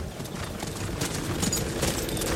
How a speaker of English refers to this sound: Very loudly, I'm sure you hear Shadowmere. Beautiful black horse with red eyes just piercing through the night.